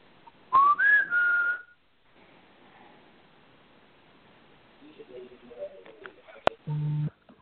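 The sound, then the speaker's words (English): A short rising whistle, then a held steady note, sounds clearly near the start in a doorway; afterward faint background noise, a sharp click, and a brief low electronic buzz near the end. “Oh, now our EMF detector is spiking right where we heard the whistle.”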